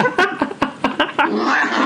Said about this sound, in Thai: เอาจริงอ่ะแมวอ่ะไม่น่ารักอ่ะ อันนี้เหมือนช่วงแมวผสมพันธุ์